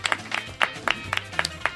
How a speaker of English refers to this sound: Sure. That deserves applause.